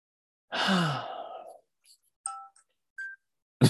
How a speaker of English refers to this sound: As my nighttime alarm goes off.